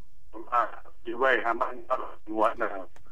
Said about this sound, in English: Sorry, say that again? Your phone line's pretty bad reception. Sorry about that.